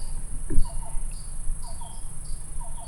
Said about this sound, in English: Oh. You hear that? Mm-hmm. It's cuckoo. Is it a cuckoo? Yeah.